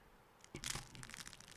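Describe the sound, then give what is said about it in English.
A knife slicing through crunchy food: a burst of crisp, crackling crunches with a sharp snap near the start, continuing as quieter scraping crackles. No one speaks. “Sounded crunchy. It's very crunchy.”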